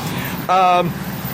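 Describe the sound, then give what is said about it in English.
A big truck rolls past at AirVenture 2014 as they get ready for the day, its low engine rumble steady throughout, with a brief loud tonal blare rising out of it midway before fading back into the drone. “Big truck going by here as they get ready for the day here at AirVenture 2014.”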